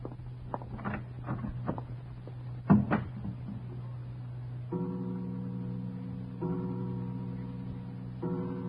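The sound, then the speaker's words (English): A door opens as someone walks in through the unlatched door, with a series of small clicks and rattles, then a sharper thud as it swings, followed by a low steady hum with no one speaking. “Forgive me for just walking in, Herr Leutnant. Good evening, Herr Kommandant. The door was unlatched.”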